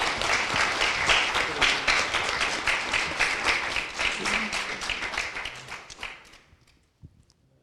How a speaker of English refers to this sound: Let's give them a clap for that beautiful song.